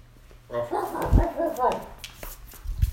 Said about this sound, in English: Let's see what my dog has to say about this.